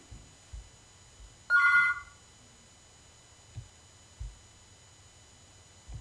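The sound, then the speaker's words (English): A single short burst of a telephone ringing, a bright trilling electronic ring that stands out clearly, with scattered low thumps and a faint steady hiss around it and no talking. “I thought that was a Liberty Bell ringing, but we're trying to get Reverend Jameson on the phone”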